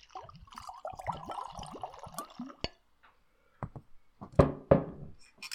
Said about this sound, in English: With that, we shall pour the scotch.